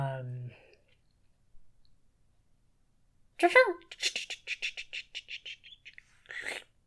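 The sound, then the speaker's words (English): Monkey chattering: a quick run of shrill, chirpy bursts in an uneven rhythm, moderately loud, following a short low call and a quiet pause. “There's the ha-ha was the monkey.”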